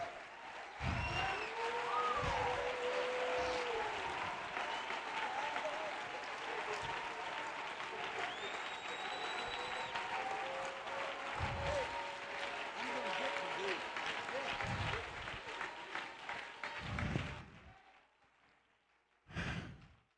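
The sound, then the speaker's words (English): A crowd claps steadily and loudly as a hand clap of praise to the Lord for about seventeen seconds, with scattered cheers, whoops and voices rising over the dense applause before it stops abruptly and a brief burst follows. “And your pastor said, I want us to stand and give the Lord a good hand clap of praise.”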